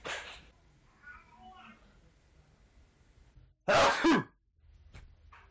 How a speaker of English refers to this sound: Bless me. I sneezed if you wouldn't mind blessing me,